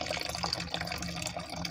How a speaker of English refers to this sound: Now, all jokes aside, man, I've been fucking around with this Mountain Dew amp shit for, quite some time. You know, it's just the perfect pick-me-up. I gotta pour this into my bottle here.